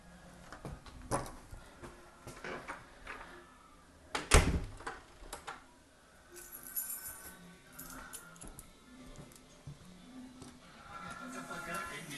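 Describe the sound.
Clicks and rattles of a key working a lock, then a sharp loud clunk as the door swings open, followed by shuffling and faint muffled voices.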